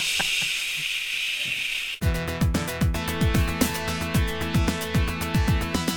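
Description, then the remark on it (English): A steady, bright hiss of white noise runs for about two seconds, then cuts off abruptly as an electronic beat with punchy kick drums and crisp ticking hi-hats takes over. “Throw some white noise into it to make it really insane.”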